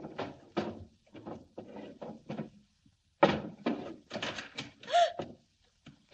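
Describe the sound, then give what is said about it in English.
Desk drawers in an office being pulled open and pushed shut again and again, a series of wooden slides and thunks with short pauses between them, some louder than others. “I stood there, opening and shutting drawers, and all the time I didn't have any idea that there was somebody watching me from the closet.”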